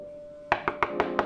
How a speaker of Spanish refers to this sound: Toco la puerta, él voltea a verme